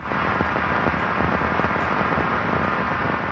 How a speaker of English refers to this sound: Not the best rain sound. Right? Is that supposed to be like a jungle canopy I'm hearing? Some probably. Large leaves? Yeah.